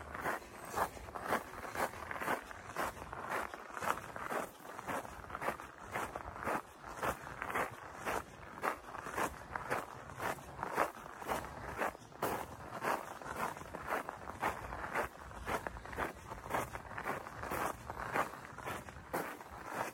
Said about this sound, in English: This part of the trail is gravel, which I'm sure you can hear the crunching gravel.